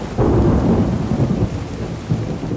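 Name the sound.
thunderstorm with heavy rain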